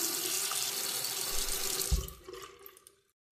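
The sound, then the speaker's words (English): A faucet runs in a steady, hissing stream, then the flow tapers off and cuts out, leaving silence. No one speaks. “Blam, she can turn faucets with her mind.”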